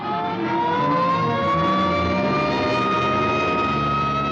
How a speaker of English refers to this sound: Hey, here comes an ambulance out.